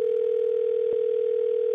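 A telephone call connecting: a steady, mid-pitched phone-line tone holds evenly for almost two seconds, broken only by a faint click midway and another at the end. No one speaks.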